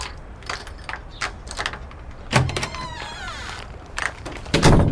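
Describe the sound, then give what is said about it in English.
Keys jangle and clink in a quick series of metallic rattles, followed by the clunk of a lock turning and the door of a woman's home thudding open near the end, with no one speaking. “You have keys to her place, right?”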